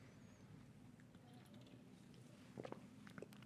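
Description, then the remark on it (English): A quiet sip from a drink, with soft wet mouth sounds and a few small clicks near the end before a brief louder noise; no one speaks. “Let's jump into the weather after I take another sip of this.”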